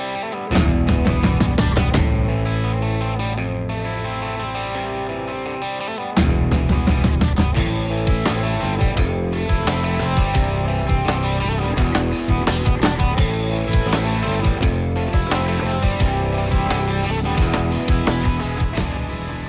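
A music track played on WRUU-LP, 107.5 FM community radio in Savannah, Georgia, with no voices: dense layered instruments and a steady beat, thinning into a sustained chord before the full loud groove crashes back in and drives on.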